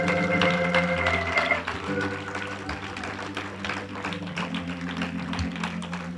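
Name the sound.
audience clapping hands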